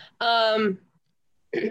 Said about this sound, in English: Sorry, guys. I keep coughing. It's disgusting, I know. Don't mind me.